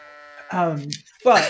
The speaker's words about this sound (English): And I don't have a good sound for trees. I just have the sheep noise, and not the tree noise.